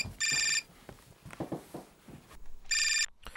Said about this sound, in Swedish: Vänta, det ringer. Jag måste ta det.